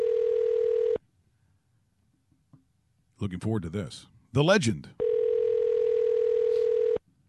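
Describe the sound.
A steady, mid-pitched telephone tone hums for about a second, drops out while a man speaks briefly, then returns unbroken for about two seconds before cutting off, as a radio show places a call to Jerry Glanville, defensive coordinator of the Hamilton Tiger-Cats.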